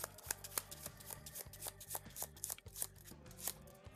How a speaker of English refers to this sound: Shuffled my player deck enough, but I need to shuffle this villain deck or encounter deck one more time.